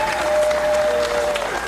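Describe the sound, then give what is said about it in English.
Workers at a Michigan distribution factory applaud as boxes of Pfizer vaccine are loaded onto trucks: a group clapping steadily together in a dense burst of applause, with a faint steady tone running underneath and no talking. “Workers at the Michigan distribution factory stopped to applaud as the boxes were loaded onto trucks.”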